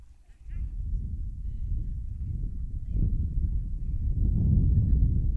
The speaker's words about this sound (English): On a windy day here at Marine City.